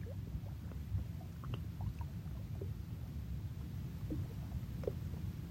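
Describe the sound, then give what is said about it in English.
Water rushes steadily over rocks, a constant low, full-bodied roar with small gurgles and splashes popping up throughout. It sounds continuous, with no voices. “Water meeting rock.”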